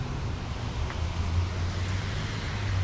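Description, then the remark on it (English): Steady street traffic rumbles at Upper James and Mohawk in Hamilton, Ontario, on a rainy day, a continuous low engine drone with a faint wash of road and wind noise and no distinct individual car passes standing out. “So yeah, there's a lot of people out here, a lot of cars.”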